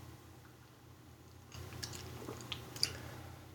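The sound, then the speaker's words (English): A quiet third sip of a pumpkin spice latte: after a moment of near silence, a soft slurp with a few small wet mouth clicks and a swallow. “Third sip time. Third sip.”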